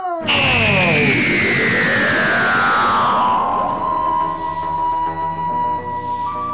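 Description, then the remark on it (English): Electronic TV closing theme music, slightly different from the opening titles, with a loud, swooping high scream-like tone built into the music gliding downward over a dense, pulsing bass rhythm, echoing and slightly distorted, continuing steadily without any voices. “and this has got to bear in mind that the closing music was always slightly different to the opening titles.”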